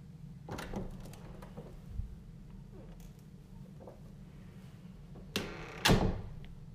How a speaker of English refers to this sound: Bedroom door.